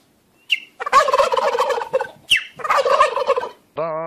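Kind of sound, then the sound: bird, turkey gobbling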